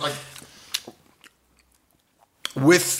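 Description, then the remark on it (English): Wet chewing of a bite of pepperoni and mushroom pizza, with a few crunchy bursts and soft mouth clicks trailing into near silence before a voice starts speaking at the end. “Yeah, that piece of pizza you just swallowed is going to be the most disgusting part of the podcast.”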